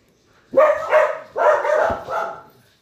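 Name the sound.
dog barking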